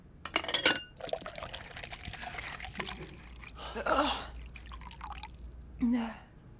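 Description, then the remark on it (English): Water trickles and splashes into a glass in a few bursts, with faint clinks and drips between pours, fairly quiet. “A glass of water.”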